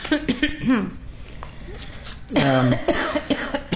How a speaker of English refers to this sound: Can't think of them without coughing.